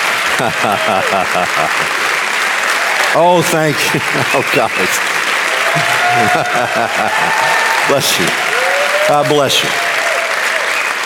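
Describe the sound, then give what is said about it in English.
A loud, sustained standing ovation from a large audience fills the entire clip. It is given for their praying and intercession, dense and steady without a break, while a voice speaks over it with a few short, emotional phrases. “You all, standing ovations for you, for praying, and standing in the gap for your intercession, I thank you from the bottom of my heart.”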